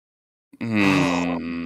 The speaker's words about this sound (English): I heard two people groan. One person gasp.